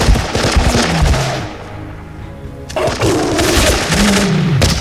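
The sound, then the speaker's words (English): Loud bursts of rapid gunfire, fired at a charging beast that stormed into a camp, crackle in dense volleys, pausing briefly to a low rumble before another sustained burst of rounds erupts, with a deep growling roar underneath throughout. “It kept taking round after round, but it wasn't going down.”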